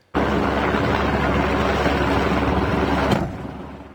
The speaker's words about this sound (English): You can hear that explosive dropped by a helicopter that triggers this massive slide. Avalanche Canada says a deep and persistent slab of snow came down. The video was taken in the Monashee Mountains.